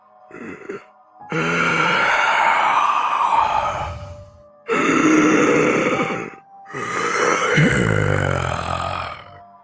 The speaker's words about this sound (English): And from inside this darkened manor, you just hear this heavy, the breathing of something old and large and ancient.